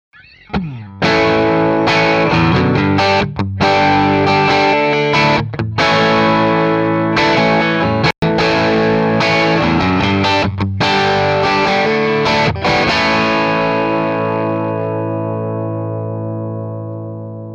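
A heavily distorted electric guitar plays loud, sustained chords through an amp, with a few brief stops between strums, then a final chord rings out and slowly decays. No voices.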